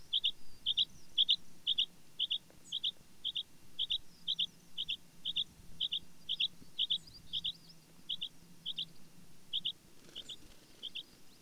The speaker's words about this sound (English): The bluethroat shows off this magnificent song flight and basically boasts to all the other birds that he can sing and fly at the same time while mimicking many of the other birds that occupy this fragile tundra.